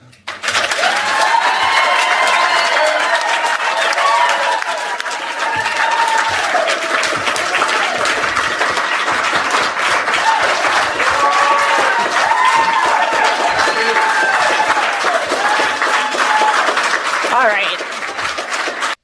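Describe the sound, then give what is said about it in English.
Loud, sustained crowd applause with cheering and whooping voices layered over dense clapping, holding steady for nearly twenty seconds before easing slightly at the end. “All right, stop the applause.”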